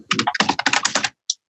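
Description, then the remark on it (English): Rapid, closely spaced keystrokes clatter on a computer keyboard for about a second, followed by a brief pause and one final isolated key tap, picked up by a microphone beside a tablet. Moderately loud, with no voices. “Your typing is coming through your microphone.”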